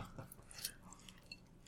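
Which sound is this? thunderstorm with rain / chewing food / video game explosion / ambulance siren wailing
chewing food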